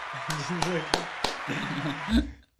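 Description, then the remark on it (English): Four or five sharp hand claps in a slow, even rhythm, fairly loud, with people talking underneath and around them. “And that deserves a little clap, little clap, clap, clap.”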